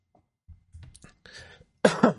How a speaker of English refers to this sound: I apologize if I cough quite a bit through this episode.